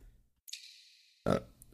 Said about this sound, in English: Pardon me. Hold on. I need to take my burping medication.